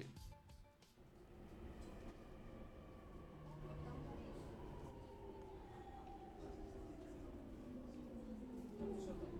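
A train sound, sampled from vinyl records in a music track, rumbles steadily and loudly throughout, its metallic whine of tones slowly gliding downward as if slowing, with a dense, continuous mechanical roar filling the background.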